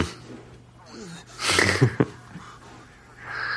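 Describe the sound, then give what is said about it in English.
Heavy, agitated breathing, with a loud rush of air around the middle and a couple of sharp snorting bursts, set over a low steady hum. “Just calm down, man. Breathing.”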